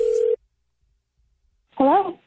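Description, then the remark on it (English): A short, steady telephone tone sounds at the start of a prank call to a man's date and cuts off, followed by a pause of silence before a voice briefly answers on the line. “When she pretends to be a dude's mom and calls his date less than 24 hours before the actual event.”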